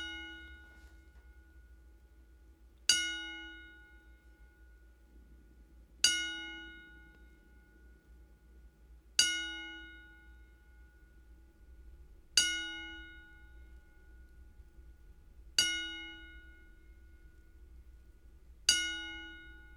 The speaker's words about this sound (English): And as promised, let me do this the proper way. Your 10 bell salute for superstar Billy Graham.